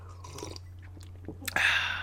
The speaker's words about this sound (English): Let me get a sip of my coffee.